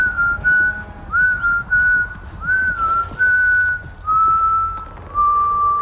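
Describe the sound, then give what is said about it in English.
Benedict Cumberbatch, walking around, whistles a slow, wavering tune in a series of sustained notes, clear, with a low background rumble and no talking, in the trailer for The Power of the Dog. “This is Benedict Cumberbatch walking around whistling.”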